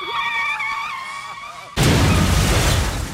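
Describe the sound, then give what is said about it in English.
A high, whining engine rev with a tire-squeal edge gives way to a sudden loud crash. A dense, roaring burst of noise follows as cars smash together at an outdoor demolition derby, held on the first night without rain in about a week. “Dude, it's Demolition Derby.”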